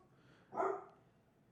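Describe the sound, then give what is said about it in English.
A single short bark from Alabama, the show's canine co-star, rings out at moderate volume in the background, against a quiet background with a faint click at the end. “Yes, we're that, there's that's our co-star Alabama there barking in the background.”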